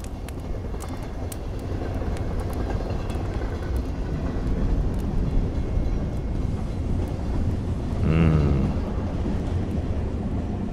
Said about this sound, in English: This is a big train, so we can get on anywhere.